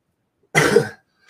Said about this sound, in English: Excuse my bad cough still.